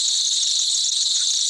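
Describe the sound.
A loud, steady cicada buzz drones on without a break, a dense high-pitched shrill that fills the whole moment with no voices over it.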